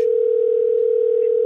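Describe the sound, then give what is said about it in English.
A steady, unbroken telephone ringback tone from a phone placing a call hums at a single pitch, loud, holding evenly for the whole moment with no voices or other sounds around it. “No, it's coming from my phone.”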